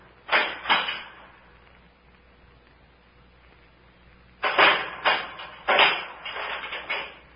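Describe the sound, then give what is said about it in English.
A brief metallic rattle as a door is unchained, a pause, then a cluster of clunks and knocks as someone puts something inside the door and closes it again, with no voices. “Someone put something inside the door and closed it again.”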